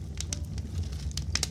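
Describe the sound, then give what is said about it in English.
A fire crackles and pops in a fireplace, with irregular sharp snaps over a low, steady rumble of flames. Moderately quiet, with no voices. “Now, let's get to tonight's story, Elfin Mounds and Fairy Hills, set to new sleep-inducing music in this beautiful fireplace.”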